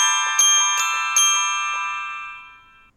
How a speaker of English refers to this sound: And so that uses bells. It's performed live. It's recorded live. And so it still has some of the same qualities of an alarm with kind of that bell tone. But again, it's more musical.